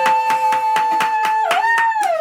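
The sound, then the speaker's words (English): Steady, evenly spaced hand claps, about four per second, ring out loud as a round of applause for a host of The Relationship Show, while a sustained whistle-like tone runs over them and bends downward near the end. “Let's give Dr. Wendy a round of applause.”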